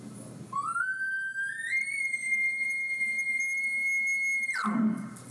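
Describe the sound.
A single imitated elk location bugle from a call or whistle: a rising whistle that climbs and holds a steady high tone for about four seconds, then cuts off sharply into a low grunt. It sounds flat and unemotional.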